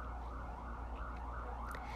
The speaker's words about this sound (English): And I would imagine there's a siren passing.